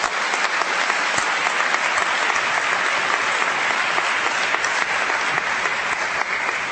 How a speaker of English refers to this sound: Let's give Princeton a round of applause.